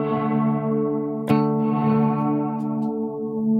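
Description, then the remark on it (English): A guitar played through a Night Sky reverb pedal, drenched in heavy reverb, rings out in a thick, sustained wash of tone, with a fresh pluck near the middle blooming into the lingering shimmer. No voices. “It's in that reverb space? It's pretty reverby.”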